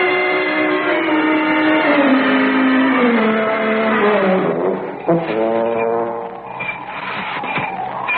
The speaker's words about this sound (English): Oh, listen, that's him. That's his horn.